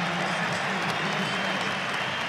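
A large football stadium crowd, Sunderland fans, applauds steadily as a substituted player comes off, a dense wash of clapping that holds at an even level for a couple of seconds, sounding broad, with no clear voices on top.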